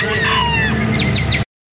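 A rooster crows loudly over a busy flock of chickens clucking, with short repeated squawks near the end before the sound cuts off abruptly.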